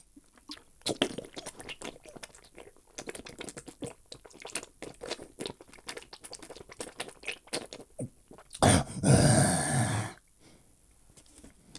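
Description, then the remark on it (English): Wet sipping and gulping sounds as a person drinks water repeat in a steady series of clicks and swallows, then a louder rushing, splashy burst lasts about a second near the end as the water spills over them. Nobody speaks. “I'm going to drink some water now.”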